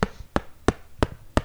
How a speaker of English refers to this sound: Listen to this sound. You hear that? That's me knocking on a hardcover copy of Stephen King's gigantic 1,100-page novel, It.